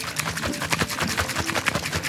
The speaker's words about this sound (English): This is a shaker bottle. This is a real man shaker bottle, not that little dinky G Fuel crap.